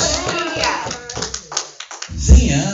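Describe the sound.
A church audience claps together in a brief burst of applause as praise to God, many hands striking at once, with a murmur of voices mixed underneath and a low rumble near the end.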